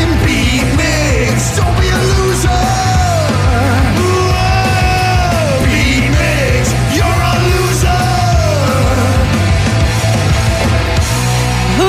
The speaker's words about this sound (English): It's time to play the game. So everybody scream his name.